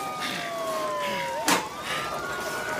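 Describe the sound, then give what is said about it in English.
Sirens of fire engines and ambulances arriving at a train crash wail with long, slowly gliding tones that overlap one another, steady and fairly loud against a noisy background, with a brief sharp burst of noise midway through. “Fire engines! And ambulances.”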